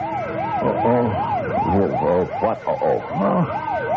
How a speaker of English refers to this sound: Oh, somebody in the bank must have hit the alarm.